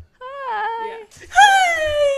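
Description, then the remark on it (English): A dog on a set whimpers twice: a wavering, high-pitched whine, then a louder, longer one that slides downward in pitch, with faint background noise underneath. “But basically, they brought a dog on set.”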